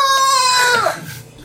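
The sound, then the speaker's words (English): A voice imitates a war cry: one loud, high, strained wail held steady for under a second, then sliding down in pitch and trailing off, with no other sounds around it. “His little war cry.”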